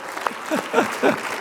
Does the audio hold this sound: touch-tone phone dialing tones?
no